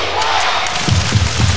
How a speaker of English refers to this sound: This crowd, again, one of the loudest buildings in the NBL.